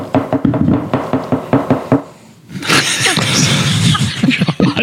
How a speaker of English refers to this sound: You know, I used to catch shit for crunching crackers, and here you are knocking your glass on the goddamn table.